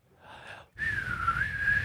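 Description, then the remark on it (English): A man whistles a long, sustained note that wavers slightly in pitch, clear, after a brief, softer breathy lead-in. No one speaks. “As he whistles”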